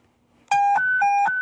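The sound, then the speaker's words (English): A loud electronic panic alarm starts abruptly after a brief quiet moment, rapidly alternating between a lower and a higher harsh tone in quick, regular steps, with no voices. “Let's see if I can find a good panic button sound effect here.”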